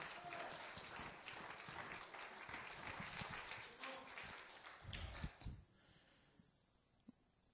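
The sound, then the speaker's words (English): A crowd claps together in praise of God in a dense, sustained burst of applause lasting several seconds, then quickly thins out and fades, leaving a few scattered claps and quiet. “Come on, give God a hand clap of praise.”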